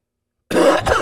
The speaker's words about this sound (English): I swear I told you were going to cough, bro. Why don't you take my word for anything? That thing is deadly to anybody and everybody who ever touches it